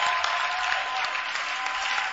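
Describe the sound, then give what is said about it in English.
An audience claps their hands for their lady pastor in steady, dense applause, a loud continuous patter of many hands with no voices standing out. “Clap your hands for our lady pastor.”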